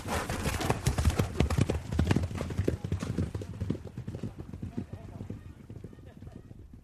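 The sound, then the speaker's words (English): Horse hooves clip-clop in quick, uneven bursts as an excited horse that won't stand still shifts and stamps restlessly, the clatter loudest at first and easing off toward the end, with indistinct voices underneath. “You can see the way the horse won't stand still.”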